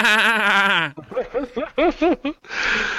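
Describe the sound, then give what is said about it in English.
A person imitates a demonic sheep with a drawn-out, wavering bleat, followed by a string of short bleating bursts and a final strained bleat, loud. “Though most often taking the form of a black dog, it can also present itself as a demonic sheep.”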